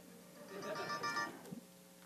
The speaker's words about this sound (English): Whoa, my pocket is ringing.